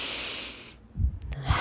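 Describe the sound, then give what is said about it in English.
A person takes a deep breath: air is drawn in with a steady, airy rush of hiss, then let out in a lower, rougher exhale after a short pause, with no talking. “Everybody take a deep breath.”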